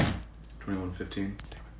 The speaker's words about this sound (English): Stop dropping my fucking phone.